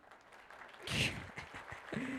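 A short round of applause for Josh De La Cruz swells, then trails off into a handful of sparse, evenly spaced claps, with a low hum coming in at the end.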